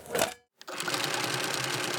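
Rapid, steady clattering of keys on a computer keyboard, dense and continuous, breaking off for a brief silent moment before resuming at an even loudness with no voices.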